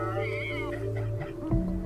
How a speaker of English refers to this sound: I mean, this cat's got a backpack on. That's kind of cool, right?